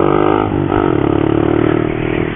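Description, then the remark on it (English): A Honda Monkey 125cc single-cylinder motorcycle fitted with a large Yoshi exhaust revs hard as it is ridden off, its loud, rasping exhaust rising and falling in pitch with a steady, buzzing engine tone throughout. “It's got a massive Yoshi exhaust on it. She's loud.”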